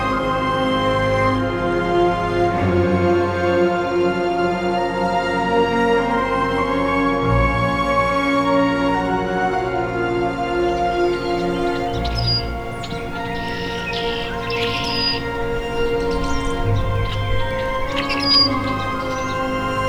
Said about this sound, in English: I'd say this rusty blackbird is right on time, about 30 minutes since its last songs.